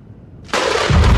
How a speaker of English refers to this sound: Thunder crashed, and lightning struck with violent fury.